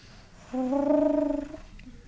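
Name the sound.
person imitating pigeon cooing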